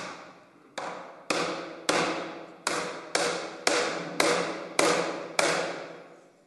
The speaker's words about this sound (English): When hammering on the head hoop, you want to make sure that it's flush with the chime.